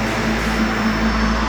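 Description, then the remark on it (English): A deep, continuous roar of three rocket engines during launch, throttled to 65% and running normally, loud and steady for the whole moment, with a low droning hum running beneath the broad rushing noise and no voices. “Engines at 65%. Three engines running normally.”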